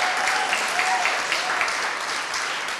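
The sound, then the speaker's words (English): An audience at an Oxford American event hosted by 21C applauds steadily for three women, a dense wash of many hands clapping at even loudness throughout, with no one speaking over it. “Well, thank y'all so much for joining us tonight, and I just want to get another round of applause for the room, for the tape, for these three women.”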